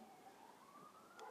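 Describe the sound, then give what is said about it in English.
An emergency vehicle siren wails faintly outside on a busy Monday morning, its tone slowly climbing as it sounds continuously, with no voices present. “Oh, and now here goes can you hear the siren?”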